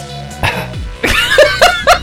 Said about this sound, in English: I like this cough